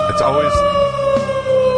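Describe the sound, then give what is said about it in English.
A loud, steady emergency vehicle siren holds a sustained high tone for nearly two seconds, continuous, with some brief indistinct vocal sounds mixed in near the start. “It's always the siren. Always the siren.”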